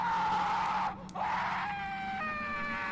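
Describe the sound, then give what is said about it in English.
A loud, piercing shriek wails continuously, dipping briefly after a second before surging back with wavering, stepped pitch and harsh, ringing overtones, echoing off hard stone walls. No one speaks. “The unholy hackle-raising shriek burst loose and bounded off the hard stone walls.”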